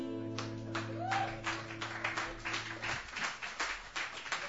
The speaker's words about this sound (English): And everybody's applauding.